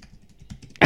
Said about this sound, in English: Not more typing.